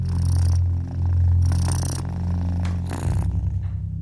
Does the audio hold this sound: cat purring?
yes